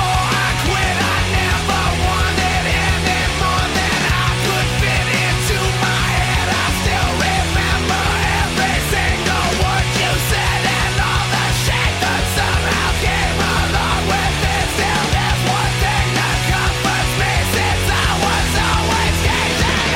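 A loud, dense rock song with pounding drums, driving bass and distorted guitars, topped by a raw, shouted vocal from the part near the end of the song. It plays at full intensity for the whole stretch.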